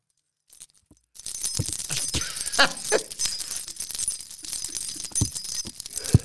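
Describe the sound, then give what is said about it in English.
A bunch of keys jangles and clinks continuously for several seconds, bright, with a few sharper metallic knocks along the way and no voices. “Here is the invaluable key to victory, and the market leader has used them to open the door to success.”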